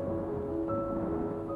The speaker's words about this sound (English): It's super loud because there's like thunder cracking and the wind is blowing like crazy and it's raining and it was pretty crazy.